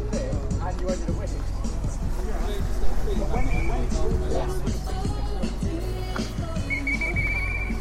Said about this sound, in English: The lady with a whistle.